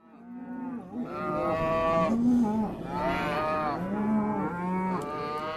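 Several cattle moo almost continuously, their deep, drawn-out lowing calls overlapping and rising and falling in pitch. The mooing is loud and steady, with no talking.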